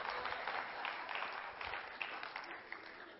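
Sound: audience clapping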